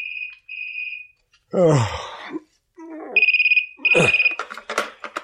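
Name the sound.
telephone ringing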